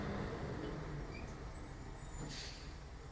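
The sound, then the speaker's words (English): A heavy dump truck idles and rumbles somewhere outside, a steady low engine drone with a short hiss of air brakes partway through and faint high whines above it. “I don't know what they're doing outside, but I want them to stop. That's a dump truck.”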